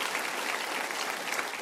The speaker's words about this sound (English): This weekend's also their anniversary, going into their fifth year. And yeah, we clap for that. Amazing.